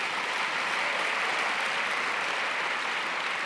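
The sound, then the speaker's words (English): A church audience claps hands for itself in a dense, steady wash of applause that stays at an even, fairly loud level for the whole stretch, with no voices standing out. “So can you clap hands for yourself as a church for that?”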